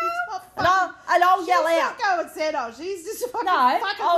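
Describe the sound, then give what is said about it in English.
A person imitates a cat's meowing with a series of about four drawn-out, wavering vocal meows, fairly loud, with pitch rising and falling on each call. “Yeah, meow.”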